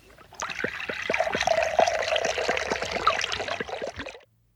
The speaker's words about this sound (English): And sometimes that is because I've had coffee or because it's hot and my mouth is dry. So I'm just going to drink a bit of water.